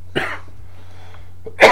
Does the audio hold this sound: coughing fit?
yes